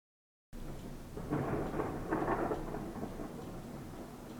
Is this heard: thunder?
yes